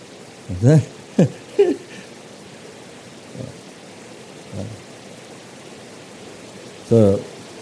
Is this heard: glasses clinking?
no